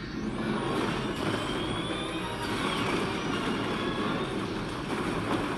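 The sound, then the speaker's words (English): Engines powering up: a loud, continuous mechanical roar with deep rumbling and a faint high whine climbing above it, holding steady throughout, with no voices. “they're powering up engines.”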